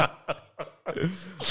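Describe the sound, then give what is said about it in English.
Two short, sharp coughs followed by a longer, rougher throaty cough with a voiced rasp, then a final burst, all loud and right up against the microphone. “You must cough away from the mic.”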